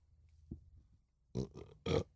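human body sound, burp

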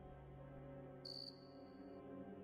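insect, cricket chirping

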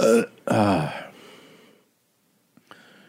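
human body sound, burp

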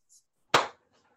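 human body sound, a single hand clap

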